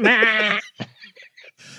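A goat lets out one loud, wavering bleat lasting about half a second, clear, followed by a short thump and a few faint, scattered noises.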